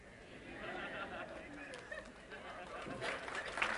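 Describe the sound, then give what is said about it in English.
A crowd of Christian listeners in a room claps and murmurs in a steady, dense wash of noise, fairly faint, building slightly toward the end with some scattered voices mixed in. “I'm going to wait till you clap your hands.”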